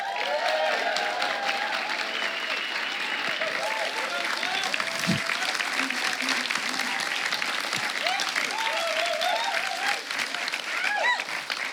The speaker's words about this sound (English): Did you get an applause?